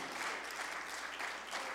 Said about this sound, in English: Somebody ought to clap your hands unto the Lord. Alguien aplauda al Señor.